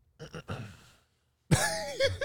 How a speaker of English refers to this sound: I'm about to speak. Why are you clearing your throat?